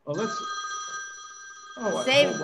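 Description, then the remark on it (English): A telephone rings with a steady, high electronic tone sustained for about two seconds, while people's voices chatter over the start and end of the ring. “Saved by the bell. I have to take care of that.”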